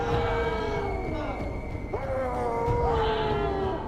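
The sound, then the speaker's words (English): A person imitates a long howl with the voice: sustained, wavering tones that slide gently downward, dip briefly near the middle, then rise and carry on, steady and fairly loud throughout. “So then he gets back to the village, and he just starts like howling, right?”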